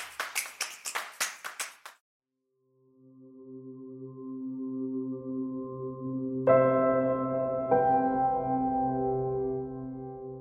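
A quick burst of sharp clapping gives way to a brief silence, then a steam train's steady rumbling drone swells in, its sustained humming tones brightening twice as higher notes join.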